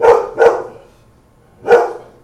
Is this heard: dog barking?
yes